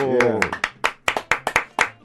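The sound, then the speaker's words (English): Crisp hand clapping from one or a few people welcoming a guest to a studio, about a dozen sharp claps in a quick, fairly steady rhythm, following a brief bit of voice at the start. “a round of applause for Jimmy Delgado”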